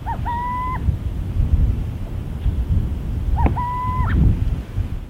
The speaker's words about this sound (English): This is what a burrowing owl sounds like when it's not imitating an angry rattlesnake.